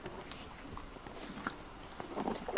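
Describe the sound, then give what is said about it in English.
A horse chewing on a metal bridle bit that has just been put in its mouth, with soft irregular clicks and crunches repeating, fairly quiet and building slightly toward the end, with no talking. “He's having a good chew on his tasty bit.”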